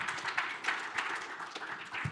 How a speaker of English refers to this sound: Thank you so much. Can we give him a round of applause?